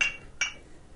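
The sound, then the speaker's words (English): Two bright glass clinks ring out as a shot of homemade blend is poured into a Dogfish glass, one right at the start and another a moment later, each with a short shimmering ring that fades into quiet. No one speaks. “I didn't want to pour the shot into the wrong homemade glass. Homemade blend goes in the dogfish glass.”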